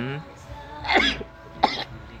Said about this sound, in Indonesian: Aduh. Alhamdulillah. Ya bersin.